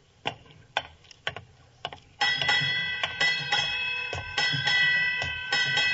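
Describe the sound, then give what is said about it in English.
A ship's bell strikes eight bells at midnight on New Year's, rung in struck pairs, each clang bright and metallic, its ringing overlapping into a sustained shimmer. A few sharp, lighter ticks come before it. “Eight bells.”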